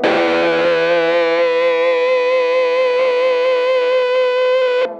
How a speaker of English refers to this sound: That's nice, isn't it? I think it's great. One of my current favorite fuzzes with that lovely harmonic, the Spaceman Effects Sputnik 3.